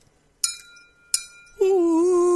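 A crystal glass is struck twice, each tap giving a bright clink followed by a clear ringing tone that fades. Then a voice begins holding a long, steady sung note next to the glass, an octave lower than the glass's resonating frequency.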